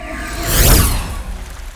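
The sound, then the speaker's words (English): Open sea ambience: a single broad, hissing swell of water rises to a peak and slowly subsides, with a low rumble underneath and no voices. “You want to be out on the open sea?”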